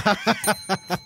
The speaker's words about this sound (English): I feel bad for that bell.